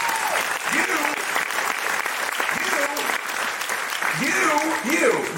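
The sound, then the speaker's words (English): Sustained applause from a sizable crowd fills the whole stretch, a dense steady wash of clapping with occasional voices calling out and cheering underneath. “You clap for that.”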